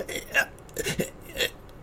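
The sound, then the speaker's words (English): A voice mimics a sneeze building up: three breathy, rising gasps at a steady rhythm, fairly loud, with no actual sneeze released. “I do too, but because of effort-wise, a sneeze is a big production, right? You're like...”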